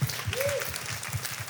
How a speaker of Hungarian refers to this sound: Jó kérdés volt, hogy köszi. Nagy taps a kérdezőnek.